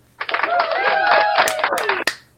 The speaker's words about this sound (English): And applause to the Hawks.